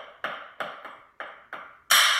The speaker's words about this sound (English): Great heavens! That was a revolver shot!